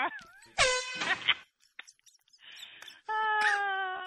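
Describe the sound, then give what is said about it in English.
A voice imitates an air horn with two loud, brassy blasts, one short and wavering, the other a sustained flat honk. Brief murmured sounds fill the quiet gap between them. “I really wanted an air horn for this bit.”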